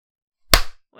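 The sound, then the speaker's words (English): One loud, sharp hand clap cracks out of silence and decays quickly, followed by a faint hint of a voice starting right at the end. “Let's clap at 55.”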